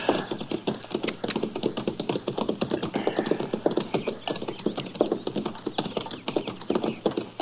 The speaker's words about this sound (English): Now, that's horses down there, Chester.